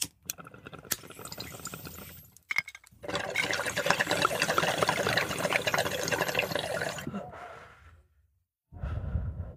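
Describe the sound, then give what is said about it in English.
Steady gurgling water bubbles through a bong for several seconds as someone draws in a long inhale, followed by a brief pause and a low exhaled breath. “Yes, I have a fresh bong packed.”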